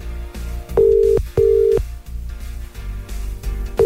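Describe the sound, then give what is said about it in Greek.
A phone line rings back in a clear double burst of steady tone, then falls quiet before the next ring starts, with the call going unanswered over soft background sound. “Θανάση δεν σηκώνει σήμερα τηλέφωνο, κανένας.”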